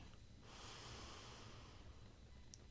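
A slow, deep inhale during meditation, a soft airy rush that swells and holds for a couple of seconds before tapering off, with no talking.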